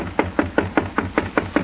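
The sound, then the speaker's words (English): Jonathan Thomas knocks on a door at the Queen's party: eight quick, evenly spaced knocks in a steady rapid rhythm, moderately loud, with no voices. “Go ahead, Jonathan Thomas. Knock on the door.”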